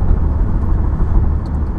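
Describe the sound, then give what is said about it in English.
Loud, continuous low rumble of a car driving over a rough, bumpy road that bounces the wheel, the road noise thick and churning with slight uneven surges throughout, no voices present. “Oh, that was some shit road. It's fucking bouncing the wheel and everything.”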